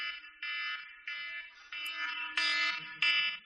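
A loud, harsh submarine collision alarm blares in repeated pulses, about six bursts in quick succession, each a buzzing, harmonic-rich tone, with no voices.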